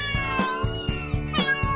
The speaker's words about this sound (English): Meow, meow, meow, the cat lady.